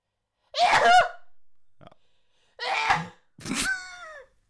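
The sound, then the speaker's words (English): Three forceful sneezes burst out, each a loud, explosive blast with a short voiced trailing edge, separated by brief pauses of near silence. “You sneeze with such force, man.”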